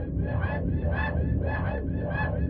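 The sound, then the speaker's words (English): Music from a digital art project: shrill, squealing tones pulse about twice a second over a dense, rumbling low drone, evoking screeching rusted cogs or baby birds nested in abandoned spaces, loud and steady throughout. “The music you're hearing is from the project, created to be reminiscent of the screeching of rusted cogs, as well as something more organic, like the sound of baby birds nested inside abandoned spaces.”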